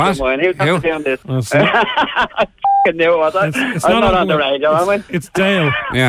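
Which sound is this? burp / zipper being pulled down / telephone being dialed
telephone being dialed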